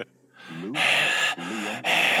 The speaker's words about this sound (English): That breathing behind Darth Vader.